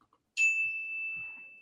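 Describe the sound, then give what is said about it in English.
A single bright timer bell ding strikes sharply and then rings on as a steady, clear tone that fades only slightly, heard alone with no talking. “Hey, I finished before the bell.”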